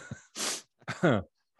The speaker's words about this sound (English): And I'm about to sneeze here.